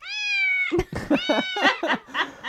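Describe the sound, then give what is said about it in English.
A cat lets out one long, steady meow, then follows it with a rapid string of shorter, chattering mews and yowls. “Listen to last month's episode if you want to know more about that cat.”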